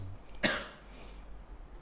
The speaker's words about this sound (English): I'm just catching a fucking cough, dude.